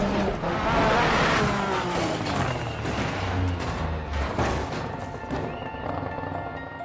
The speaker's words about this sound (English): Left four of the rock crest. 100. Right six of a jump continues for 100 over bump. Rally car, just smashing around corners.